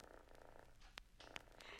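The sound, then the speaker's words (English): A pet cat lying on a sofa purrs in a low, steady, rumbling drone, fairly quiet, with two brief sharp chirps or clicks breaking through partway along. No one speaks. “maybe our guest would like to meet our kitty cat. Why, of course. Here he is lying on the sofa. Just listen to him purr.”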